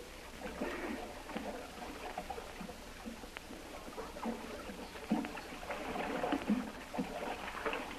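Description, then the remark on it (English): Steady splashing and sloshing of water as someone swims with repeated strokes from a canoe up to a covered boat, continuous, growing a bit louder toward the end. No voices. “Hold the canoe on this side here, and I'll swim up there.”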